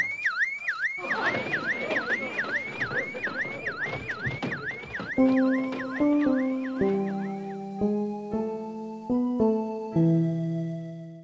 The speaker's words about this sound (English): I'm sounding the alarm!